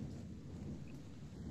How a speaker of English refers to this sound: This one might be tough, actually. I don't know. With the thunder there, I would have thought it was